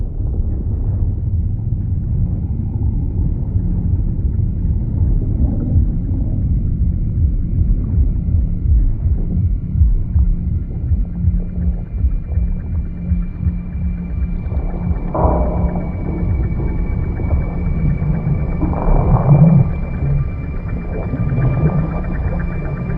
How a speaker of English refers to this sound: there's all these wonderful sound design elements that make that ocean floor and that environment down there almost seem like it's pulsing and it's a live thing down there.